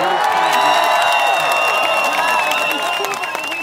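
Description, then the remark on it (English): A large crowd at BC Place in Vancouver roars and cheers loudly and continuously as Vancouver is chosen to host part of the 2026 FIFA World Cup, with whoops, shrill whistles and scattered clapping blending into a dense, sustained wall of celebration. “The feeling in the crowd at BC Place, more excitement than relief.”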